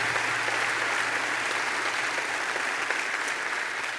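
A church audience applauds steadily to thank a man for his work feeding people in the county, a dense, even wash of many hands clapping at a constant loud level throughout, with no voices standing out above it.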